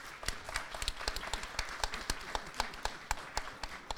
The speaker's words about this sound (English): If you want us to move forward, would you clap your hands?